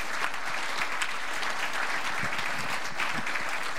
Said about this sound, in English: So I would like to give God the praise through a round of applause for these folks allowing them to use him this year.